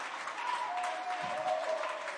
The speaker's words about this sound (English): Why don't you give the Lord a hand clap right now?